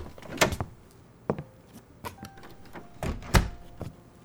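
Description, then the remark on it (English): An office door opening, with a handful of sharp latch clicks and dull wooden thunks spread irregularly over a few seconds, in a quiet office with no talking. “Stepping into her office, he remained just inside the door”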